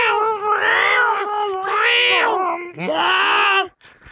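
A cat caterwauls in three long, drawn-out yowls, each rising and wavering, loud with brief breaks between them and no talking.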